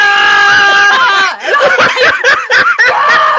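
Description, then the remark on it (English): A loud, sustained high-pitched scream from a single voice, performed as an imitation, lasting about a second before breaking into choppy bursts of laughter. “You have to do your scream.”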